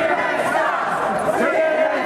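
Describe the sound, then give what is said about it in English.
A hostile conservative crowd at a convention jeers and shouts at CNN's Jim Acosta, many voices merging into a loud, steady roar of booing and heckling that holds at an even level throughout without a pause. “Not such a warm welcome from the conservative crowd.”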